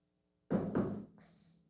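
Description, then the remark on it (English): Two firm knocks in quick succession, fairly loud, punctuating a knock-knock joke, followed by a softer, trailing rustle as the sound fades. “Knock jokes with a knock.”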